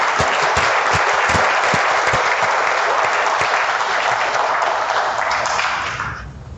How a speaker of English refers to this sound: So let's give him another warm applause.